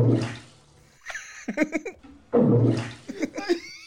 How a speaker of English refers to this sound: I think it's going to be this one because it used to be a toilet flush, and this is an iguana farting into a bathtub.